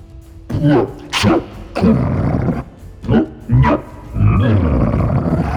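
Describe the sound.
A person vocally imitates a cat coughing up a hairball: a run of loud, throaty hacks and gagging bursts, some harsh and hissy, ending in a longer guttural retch.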